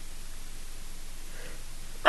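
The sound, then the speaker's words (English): Near silence with faint background hiss, then one sudden, loud sneeze bursts out at the very end, sharp and breathy, cut off almost as soon as it starts. “Mercy, that felt good. I love to sneeze.”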